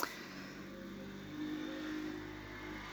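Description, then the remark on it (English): A small motorbike or moped engine drones steadily outside an open window, its pitch rising slightly as it revs, heard alone with no voices. “That's someone on some sort of motorbike or moped or something outside the window.”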